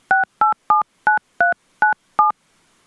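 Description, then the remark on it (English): Seven touch-tone keypad beeps dial a wireless phone number, starting with the area code, into an automated phone menu at a steady, quick pace, each a short clear dual-tone chirp, followed by brief silence. No voices are present. “Enter the wireless phone number that you are calling about, starting with the area code.”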